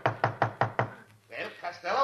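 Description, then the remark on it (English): Five quick, evenly spaced knocks on a door, loud, followed by a brief pause and then a man's voice beginning to speak. “why don't you answer the door?”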